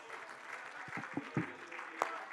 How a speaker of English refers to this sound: If you believe that, would you lift your voice and clap your hands unto him right now?